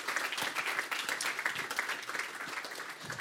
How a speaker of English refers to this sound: If you're a life group leader, how about you stand? Church, I just want you to just give them a big thank you clap, because we really appreciate you.